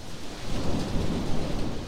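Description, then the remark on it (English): Heavy rain pours down in a steady, dense hiss, with a deep rumble of thunder rolling underneath throughout, in a film scene where the Duke and Viola run into a barn to escape the rain. No one speaks. “Later in the film, the Duke and Viola run into a barn to escape the rain.”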